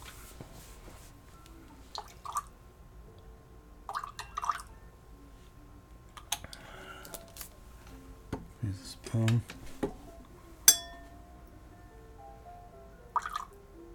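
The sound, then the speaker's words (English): Water drips into a glass of whiskey in a few separate, small plinks spaced seconds apart, fairly quiet, with soft handling clicks and a faint hum in the background. “Now, the water.”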